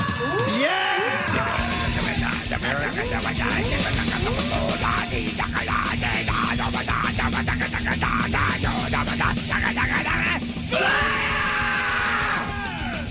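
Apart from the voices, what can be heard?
person screaming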